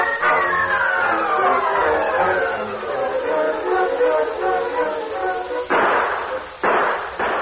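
gunfire

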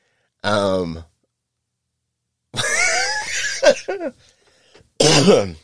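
coughing and throat clearing

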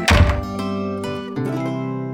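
door opening and closing

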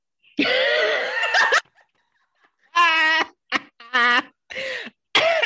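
coughing fit

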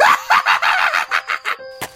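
chickens clucking and crowing

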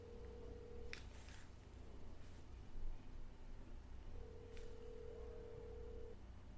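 telephone call ringing unanswered

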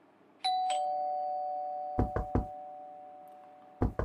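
doorbell ringing

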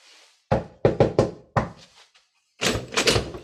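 knocking on a door

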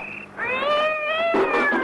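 cat yowling

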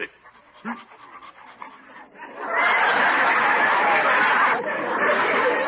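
dog panting

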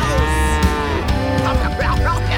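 cows mooing

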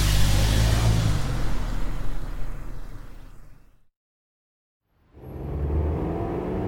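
taxi cab pulling up

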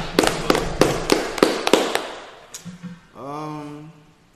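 hand clapping

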